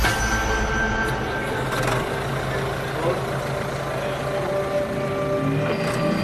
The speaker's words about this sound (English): But, well, virtually no passengers. And the bus lanes aren't ready yet. So this bus is taking up a lot of space on the roads.